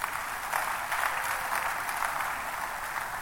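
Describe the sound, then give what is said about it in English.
An audience at a church service breaks into steady, sustained applause, clapping for themselves, a dense wash of overlapping claps holding at an even level for a few seconds with no voices above it. “Somebody clap for yourself.”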